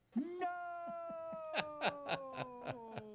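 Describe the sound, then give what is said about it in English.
A cat yowls in one long, loud, drawn-out wail whose pitch slowly sinks, with a series of sharp rhythmic bursts pulsing through the second half of the cry. “Never hold a dustbuster and a cat at the same time.”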